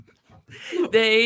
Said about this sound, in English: And if you'd like to see my insane dogs be insane, please enjoy. I'm going to escort them out of my office.